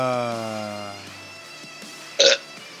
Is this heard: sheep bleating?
no